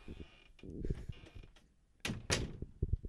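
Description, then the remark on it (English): A door is opened, with a couple of handling thumps, then two broad swishing bursts like the door swinging or sliding, followed by a few more soft knocks. No one speaks. “Let me open the door.”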